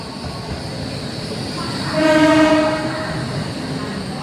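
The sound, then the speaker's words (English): Busy railway station ambience at the new train station in Luang Prabang, Laos, with a steady rumble of trains, and a train horn swelling in the middle for about a second before fading back into the constant mechanical hum. “Ah, the sounds of a railway station.”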